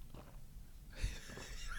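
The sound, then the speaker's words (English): A single loud gulp as someone swallows a sip of drink from a crystal glass after a toast, a low wet thump followed by soft breathy throat noise, with no talking. “You have the loudest throat I've ever heard in my life.”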